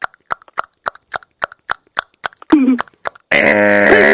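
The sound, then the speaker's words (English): An egg timer ticks in a steady, quick rhythm, about three crisp clicks per second, then gives a short rasp before its loud, continuous metallic ring goes off. “We're going to actually have an egg timer, and then when it goes off, Ryan is hanging up.”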